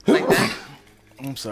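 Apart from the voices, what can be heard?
sneeze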